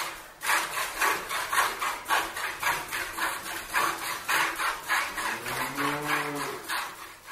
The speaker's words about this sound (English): Churning the butter. What could make me happier than churning butter? Churn.